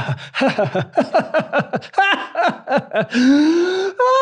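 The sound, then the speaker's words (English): A person imitates crying breathing: four short, sharp, catching gasps in, then one long, voiced, wavering exhale like a sob, fairly loud with no other talk. “So if you want to do crying breathing, if I get this right, you go four breaths in and then one breath out.”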